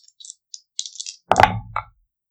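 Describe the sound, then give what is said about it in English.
Dice clatter lightly a few times, then a louder rattling tumble across a table ends with one final click, with no voices; the roll comes up 19. “19 on the dice for 28.”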